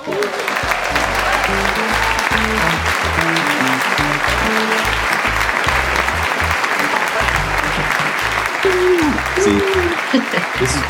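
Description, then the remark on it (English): A canned applause effect: dense, steady clapping from a large crowd that fills the whole stretch at an even, loud level, with faint cheering voices mixed in. “So y'all wonder, is this real applause? No, it's not real applause.”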